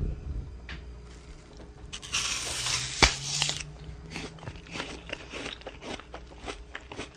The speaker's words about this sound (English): And I suppose I better try and eat this apple. It's very strange. I looked forward to it for so long, and now it just feels like a little bit of an ordeal.